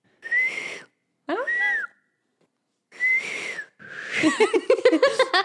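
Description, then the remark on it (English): A woman reverse whistles by drawing air in, producing breathy, wavering tones in short bursts with pauses between, ending in a fluttery, warbling run of pitches; fairly loud, no talking. “She reverse whistles, remember?”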